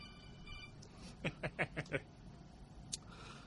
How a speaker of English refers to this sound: Yeah, I'm a real professional. My phone goes off in the middle of a podcast. Mine did too last time, so don't worry.